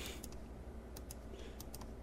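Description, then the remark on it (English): Soft keyboard and mouse clicks tap in small irregular clusters, a few sharp clicks every half second or so. Quiet, with no voices. “You just kept on clicking.”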